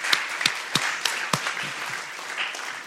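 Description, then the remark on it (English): A church audience applauds steadily, a dense wash of many hands clapping at moderate volume, with a few sharper claps standing out near the start before the sound settles and thins slightly. “you can go ahead and clap, go for that.”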